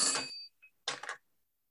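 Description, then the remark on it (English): A telephone rings in two short bursts with a brief pause between them, bright and jangly but fairly quiet, with no one speaking, as a caller phones in to leave a message. “Wait. What was that? That's the bat phone.”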